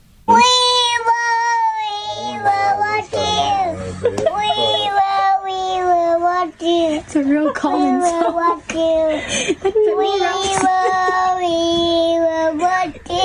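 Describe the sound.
A toddler's high, wavering voice sings a slow, soothing lullaby to help a newborn go to sleep, holding long notes that glide up and down, with brief pauses for breath between phrases.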